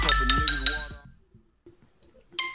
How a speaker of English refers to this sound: I woke up this morning to my phone going crazy. It rang like three different times before it woke me up completely.